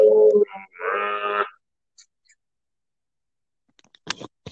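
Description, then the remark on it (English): A cow lets out a loud moo in two quick harmonic bursts lasting about a second and a half, followed by silence and a few faint clicks and rustles. “Okay, I just heard a cow.”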